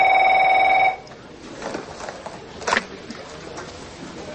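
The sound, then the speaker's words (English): A telephone rings with a steady electronic tone for about a second, then stops abruptly, leaving faint room noise and soft movement sounds. “Phone.”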